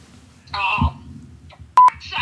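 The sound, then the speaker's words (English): A mobile phone sounds a single short, loud electronic tone, cutting in sharply between stretches of muffled talking. “number one rule of podcasting, turn your phone on silent.”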